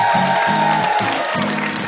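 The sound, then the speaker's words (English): An audience on NPR's Ask Me Another applauds loudly and steadily throughout, a final round of applause for VIP guest Meg Wolitzer, a dense wash of clapping with a regular low pulsing beat beneath it. “One last round of applause for our VIP, Meg Wolitzer.”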